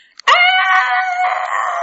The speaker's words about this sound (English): Then she set up a scream.